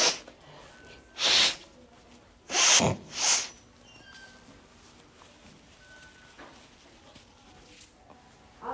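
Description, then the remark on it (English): Someone blows their nose into a tissue before medical testing by a nurse, in three short forceful bursts: one, then a quick pair a moment later, with quiet background in between and no talking. “I'm going to have you blow your nose.”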